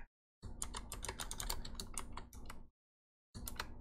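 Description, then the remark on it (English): Rapid, crisp clicks of typing on a new, clicky mechanical computer keyboard, a steady burst of keystrokes for a couple of seconds, a short pause, then more typing. “Sorry if I have a super new clicky keyboard, so you're probably hearing that.”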